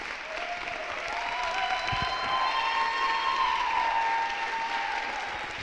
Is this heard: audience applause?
yes